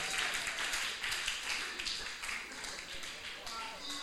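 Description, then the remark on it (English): Sustained audience applause, a dense, steady wash of many hands clapping at once for about four seconds, with faint voices mixed into the crowd noise. “Clap for all colored people.”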